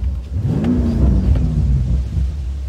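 A BMW M5 sports car engine revs and accelerates on smooth hill roads in Palos Verdes, its deep growling tone rising and sliding in pitch over a steady low rumble, with no talking.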